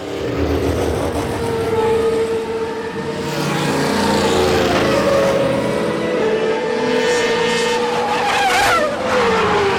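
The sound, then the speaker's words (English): Race car engines rev loudly and continuously, pitches rising and falling, with tires squealing and skidding near the end. The roar stays dense throughout, with no voices. “Gentlemen, start your engine!”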